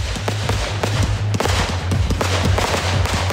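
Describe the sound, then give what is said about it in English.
Fireworks explode in a rapid, dense barrage of loud cracks and bangs, popping almost continuously over a steady low rumble, with no voices heard, at a charity fireworks display in wet weather at Bell Hill Recreation Grounds in Petersfield, attended by over 3,000 people. “Petersfield fireworks display goes off with a bang.”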